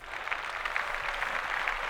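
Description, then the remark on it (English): A steady burst of applause for Aubrey Drake Graham's 36th birthday, dense overlapping claps forming a continuous bright crackle at even loudness throughout, with no voices over it. “Round of applause for that young man.”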